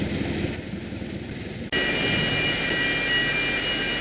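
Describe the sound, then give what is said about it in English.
A loud, steady roar of water rushing out of the country's biggest canal lock after an alarm, as a boat inside is lowered about 60 feet. It briefly cuts out partway through, then returns fuller with a faint high whine riding on top. “Inside the country's biggest lock, the alarm told us the water is beginning to flow and we are on the way down.”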